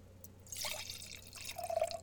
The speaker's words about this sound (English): All right, well let me get my sake out here. I have the Brooklyn Kura Junmai Dai Ginjo cat skills. So I'm gonna give this a pour.